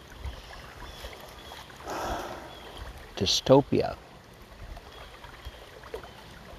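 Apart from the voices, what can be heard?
river water flowing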